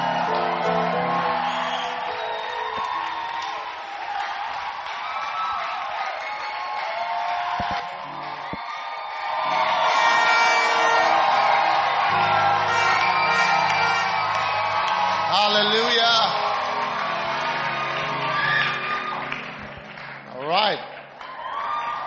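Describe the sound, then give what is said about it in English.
An audience applauds and cheers to welcome Bishop Dag Heward Mills before the word is preached, a steady, dense wash of clapping mixed with whoops and shouted voices, swelling louder midway and fading slightly near the end. “Our Father is back with a round of applause.”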